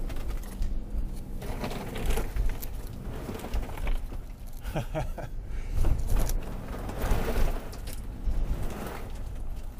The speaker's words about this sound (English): You can hear ice slipping and sliding off my car.